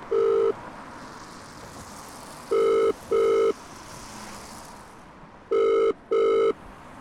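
A telephone rings in repeated double bursts before a voicemail greeting, a steady electronic purr pulsing twice, pausing, then twice again, over a low constant background hiss. No one speaks.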